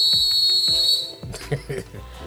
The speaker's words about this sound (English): All right, so we got two blows of the whistle. So we'll go to that now.